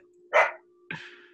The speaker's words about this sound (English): sorry, we got a dog. No problem. Come on, man, get your dogs under control.